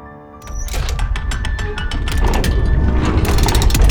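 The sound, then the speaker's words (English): A big heavy metal door, opened by Inspector Chimp and Rollie, grinds and rumbles open with loud mechanical clanking and rattling, building steadily for several seconds, with no voices present. “When Inspector Chimp and Rollie opened the big metal door, they were greeted with the figure of a half-bear, half-machine.”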